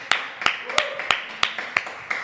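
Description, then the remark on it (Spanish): A short burst of applause for Mi Casa Círculo Rojo, producer of a show: about seven sharp, evenly spaced hand claps in a steady rhythm, fairly loud and crisp, with a faint hum underneath. “fue una producción de Mi Casa Círculo Rojo, que pido un aplauso para Mi Casa Círculo Rojo.”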